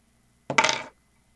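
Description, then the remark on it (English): A quick clatter of dice tumbling across a hard table, a rapid burst of small hard clicks lasting under half a second before settling, with no voices. “So add 2 to every dice you roll.”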